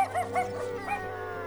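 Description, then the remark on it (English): A wolf howls in a long, wavering cry, its pitch sliding up and down through several quick swells at a moderate, steady level, with no one talking. “Man's original best friend. This journey starts back when dogs were still wolves.”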